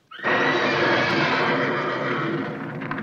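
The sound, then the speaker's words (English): A horse at a horse farm in the hills above Los Angeles neighs loudly, one long whinny that holds for about three seconds before trailing off, with no voices around it. “Leachman lives near a horse farm in the hills above L.A., and it seems like the neighbors were in on the joke.”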